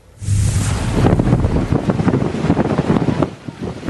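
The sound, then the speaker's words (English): Loud, blustery storm wind roars across the microphone while heavy, destructive waves churn and crash along a coastline, a continuous stormy rumble with surging gusts and no voices. “The storm's closed bridges and highways and has whipped up destructive waves along the coastline.”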